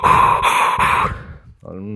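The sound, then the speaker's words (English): A voice imitates the heavy, panting breathing of a woman running on a path behind the speaker: three quick, harsh breaths in a row, a brief pause, then a strained, voiced exhale, loud. “As I imagined it, because like she was, I reckon she was about this far away from me, like breathing heavy.”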